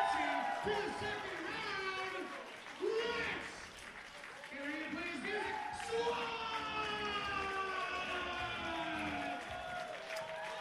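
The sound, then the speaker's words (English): A large wrestling crowd at an Impact Wrestling match, on its feet after Rich Swann wins with a springboard cutter, cheers and applauds loudly and steadily, with shouts and whoops rising above the roar, while voices talk over the noise throughout. “The crowd is on their feet.”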